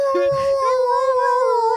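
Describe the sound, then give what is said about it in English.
A person imitates a husky's howl, holding a long, steady wavering tone for almost two seconds, with a brief low vocal break near the start. “Yeah, they do what huskies do. Like, oh, that's howling.”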